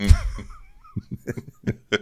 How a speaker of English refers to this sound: Sorry for coughing in your face, everybody.